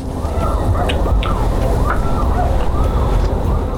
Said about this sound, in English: Is that an alarm? That's 100%. It's like the Rogue One alarm. That is too much.